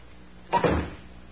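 A door swings shut with a sharp wooden thud followed by a brief latch click, moderately loud, then a short fading rumble into quiet room tone.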